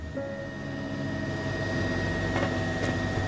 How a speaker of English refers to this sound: While it wasn't impossible to talk over the whine of the helicopter, no one had any words to say.